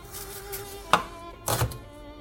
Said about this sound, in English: Alright, here we go. Chopping shallots.